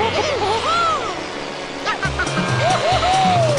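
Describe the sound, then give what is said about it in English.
Sounds from the kart racing video game Diddy Kong Racing: a buzzing engine drone that steps up and down in pitch, with squealing, whistle-like swoops arcing up and down over a busy, fairly loud mix. “Diddy Kong Racing. Really, really good.”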